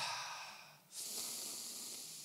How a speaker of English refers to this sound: Some of you need to breathe. Take a deep breath.